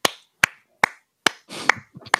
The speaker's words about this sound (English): Gave him a Rudy slow clap.